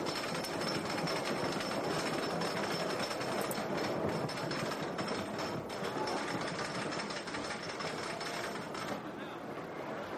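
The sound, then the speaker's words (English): A roller coaster grinds up its second lift hill, a steady, loud mechanical rattle and clatter that holds an even level throughout, with a thin high whine running above the din. “And now, of course, the second lift hill.”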